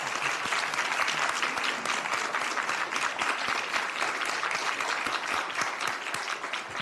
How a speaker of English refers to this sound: If everyone, please join in giving a big round of applause and thanking Team Rubicon for their effort.